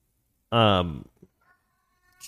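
A cat lets out one loud meow lasting about half a second, its pitch sliding downward, followed by a faint little chirp and then near quiet.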